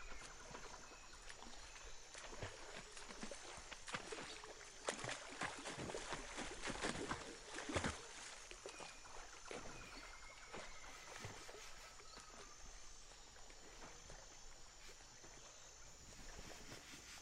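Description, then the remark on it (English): Water sloshes and splashes steadily for several seconds, with irregular strokes and churning as a tiger, Narengi, swims across a very fast-running river section, over a constant faint background hiss. “And so he took a deep breath and remembered what his mother taught him, and Narengi dove into the water and swam with great strength.”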